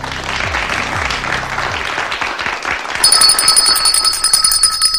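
A red bell rings out partway through, its bright, sustained tone ringing over a steady wash of crowd applause and clapping that fills the whole clip.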